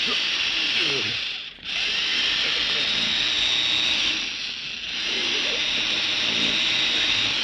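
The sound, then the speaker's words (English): In a Boston Blackie radio drama scene, a drill bores steadily into a metal vault, its harsh, high-pitched whine droning loudly and continuously, easing off briefly twice before grinding back up to full strength. “Go ahead with your drill, Addy.”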